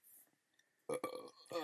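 A loud belch erupts after a moment of near silence, rumbling on for almost a second with a throaty, voiced rasp before trailing off.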